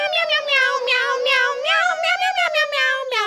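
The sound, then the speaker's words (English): A tinny electronic button in the middle of a Christmas sweater with cats on it, when pressed, plays a rapid, continuous string of meows set to a bouncy tune, loud, with no talking over it. “Meanwhile, we just got sweaters that have cats on them that say Meowy Christmas, where if you press the one in the middle, it's like meow, meow.”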